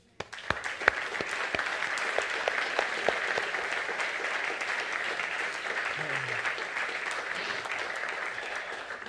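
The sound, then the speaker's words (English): An audience claps steadily for several seconds during a church worship service to honor the Lord, a dense, bright wash of many hands with a few sharper individual claps standing out, holding an even loudness throughout. “Let's honor the Lord with a clap.”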